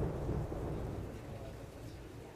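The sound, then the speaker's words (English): A deep, rolling rumble of distant thunder sustains under a steady wash of falling rain, fairly loud and continuous throughout, with no voices. “The rain wasn't letting up, that was for sure. I could hear thunder in the distance, but that was nothing compared to the storm brewing in my chest.”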